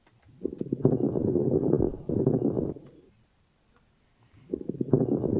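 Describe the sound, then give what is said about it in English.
Lung crackles through a stethoscope: two muffled, rushing breaths scattered with fine, brittle popping clicks, separated by a quiet pause. The crackling sounds like crinkling cellophane, and no one speaks. “It's very difficult to record from a stethoscope and make it sound like what you hear in your ears, but it just kind of sounds like crinkling cellophane.”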